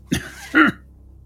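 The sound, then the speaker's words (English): A rough, racking cough from a badly burned man comes in two quick bursts, the second fuller and more voiced than the first, then fades into quiet. “There's this rolling, racking cough that comes out of him.”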